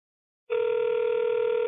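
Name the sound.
telephone ringback tone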